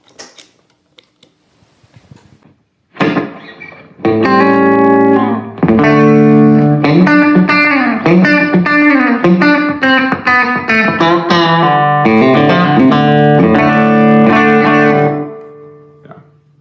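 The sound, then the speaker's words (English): An electric guitar played through a Karma overdrive pedal and a DM3 delay set for a quick slapback plays sustained chords and melodic lines, each note doubled by a short echo. Quiet handling noise leads in before the loud playing, which rings out clearly with no one talking. “So, had the Karma on there, then the DM3 for just a quick slapback, and let's turn that on.”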